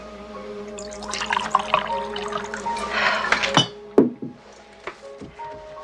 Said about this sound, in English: Here, let me pour another one.